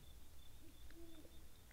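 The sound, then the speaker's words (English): An owl hoots softly at night, two low, drawn-out calls, over a faint steady insect trill and low background rumble. No one speaks. “You can hear the owls.”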